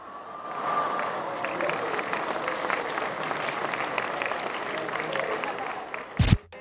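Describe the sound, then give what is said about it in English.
A crowd applauds steadily for about six seconds, a dense wash of many hands clapping at once, then ends abruptly with a short loud thump. “That's what every Benning bro was doing after reading that tweet. They were clapping.”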